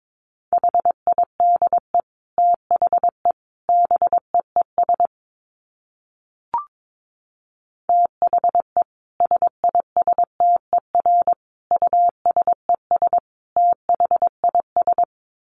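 A steady, mid-pitched Morse code tone keys out rapid dots and dashes at around 22 words per minute, in bursts separated by short gaps, with one soft click during a longer pause.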